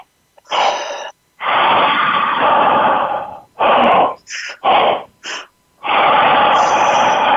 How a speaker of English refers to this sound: Okay, so remember, in and out of the mouth, we're going to start in the belly, in the chest, and out. And with some belly breath, make sure if your belly expands like a balloon, you watch a baby breathe.